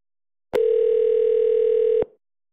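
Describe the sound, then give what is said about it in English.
A loud, steady telephone dial tone after a call to a funeral home is hung up hums at one unwavering mid pitch for about a second and a half, starting and cutting off abruptly, with no voices around it. “I think you hung up.”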